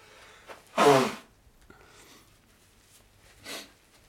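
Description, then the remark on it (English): A forceful nose blow lets out a loud honking burst, followed a few seconds later by a shorter, softer second blow. No one speaks. “I have to blow my nose 3 times.”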